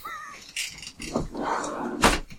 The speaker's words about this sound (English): Stupid door.